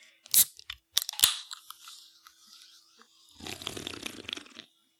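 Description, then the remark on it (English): A few sharp metallic clicks and a brief fizzy hiss, then about a second of wet sipping from a can of Smirnoff Seltzy watermelon-flavored hard seltzer. No one speaks. “All right, well, folks, I'm drinking a Smirnoff Seltzy, this time watermelon flavored.”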